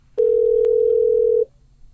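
A loud, steady telephone dial tone of an outgoing phone call rings out as one unbroken beep lasting just over a second, then cuts off, leaving a faint low background hum with no talking.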